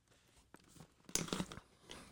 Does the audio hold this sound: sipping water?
yes